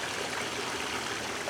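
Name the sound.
water trickling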